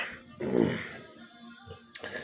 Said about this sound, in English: And there my dog is spasming out because she's dreaming.